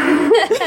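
A playful, voiced mock sneeze: a short, drawn-out sound rising into two quick pitched bursts, loud and over in under a second, with a laughing edge to it.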